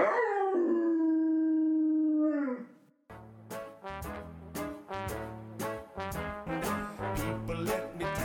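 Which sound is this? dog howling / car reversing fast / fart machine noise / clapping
dog howling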